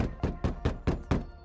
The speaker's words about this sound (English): I pounded the cabin door, but no one responded. The doorknob turned in my hand, but the door wouldn't budge. Pathetically, I pounded the door again.